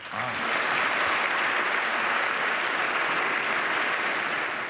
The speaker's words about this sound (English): Yes, an idea worth standing and applauding for.